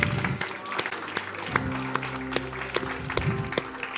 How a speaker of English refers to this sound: Now let's clap before the Lord. Let's clap.